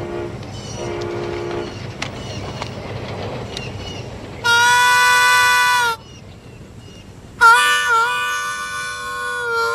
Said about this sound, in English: Here's a clip from the Crossroads movie where Willie Brown is trying to get Lightning Boy to make the guitar sound just like the train. Hey, look at that train over there.